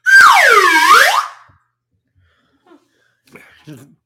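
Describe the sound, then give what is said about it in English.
A loud slide whistle glides sharply downward in pitch and then swoops back up, lasting about a second, followed by quiet silence and a few faint, brief bits of talking. “I bet you Michael Waltrip does own a slide whistle.”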